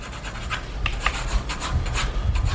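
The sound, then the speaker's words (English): Pencil strokes scratch across paper in quick, uneven bursts as a man's face is sketched, showing narrow eyes, hair buzzed close to the scalp and a thin, light mustache; a dry rasping texture with brief brighter scrapes scattered throughout, steady and unaccompanied by voices. “The sharp pencil strokes showing narrow eyes, hair buzzed close to the scalp, and a thin, light mustache.”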